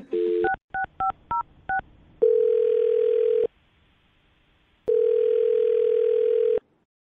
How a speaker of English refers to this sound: I'm dialing her phone number right now